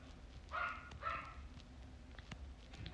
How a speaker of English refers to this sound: Sorry, I'm getting distracted by my dog.